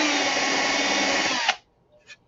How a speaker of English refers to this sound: We're going to go ahead and put a screw here. So I'm just going to drill it in and countersink just enough for the head.